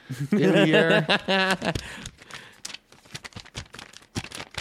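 A brief drawn-out vocal sound opens, then someone waves a sheet of paper, a rundown, giving a run of quick, dry crackles and swishes of varying loudness.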